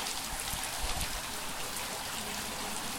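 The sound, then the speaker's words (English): Water trickles and drips steadily by gravity through a water filter from the top chambers, a continuous soft splashing patter with a few slightly heavier drops, even in loudness, with no voices. “And the gravity pressure, it just drips down through the filter.”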